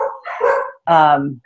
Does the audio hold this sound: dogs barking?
yes